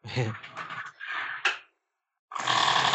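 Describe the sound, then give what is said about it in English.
A door opens and shuts with grinding, rattling mechanical noise, ending in a sharp bang. After a brief silence, a loud, steady rushing whir starts up and keeps going. “And here comes the awesome door again.”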